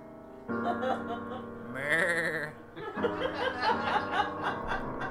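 Goats bleat one after another in a quick overlapping series, with loud, wavering, nasal cries and a chorus of shorter bleats following.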